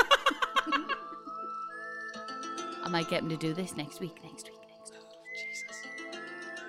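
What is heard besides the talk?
person whistling a tune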